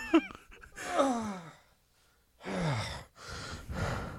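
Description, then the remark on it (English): Heavy, effortful breathing while a person takes off a robe: a sharp gasp, a long sighing exhale, then three loud breaths after a brief pause, with faint rustling of fabric. “That sounded exhausting. You're breathing as much as I normally am.”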